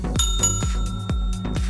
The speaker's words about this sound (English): Well, that was the double bell. That means my shift is coming to an end and we're going to have to lock the front doors.